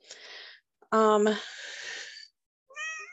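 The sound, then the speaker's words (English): A female cat meows several times: a breathy opening call, then a loud, strongly harmonic meow that trails off, and after a pause a short, higher chirping meow. No one speaks. “Yeah, the cat is too.”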